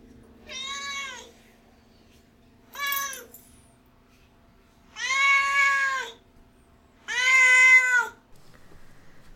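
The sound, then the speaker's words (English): A domestic cat meows four times, clear drawn-out calls with pauses between, the last two longer and louder, with no talking over them. “it's time for Duarte's Corner, where my cat Duarte gives his opinions about the book.”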